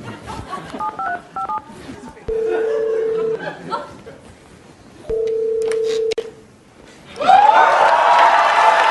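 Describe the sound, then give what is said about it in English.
A phone number is tapped out in quick electronic touch-tone beeps to call Stormy Daniels, followed by two long, steady ring tones on the line, then a louder burst of sound as the call connects. “Call up Stormy Daniels and fix this once and for all.”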